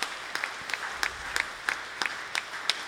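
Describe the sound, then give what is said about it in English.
Audience applause with a steady wash of clapping, a few sharper claps standing out in a regular rhythm about three per second, moderately loud with no talking. “So let's go ahead and give them a hand again, because that is awesome.”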